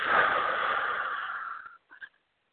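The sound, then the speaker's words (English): A long, deep breath during a breathing exercise rushes out steadily for over a second and a half, fairly loud, then fades into a couple of faint, brief breathy catches. “Keep on breathing.”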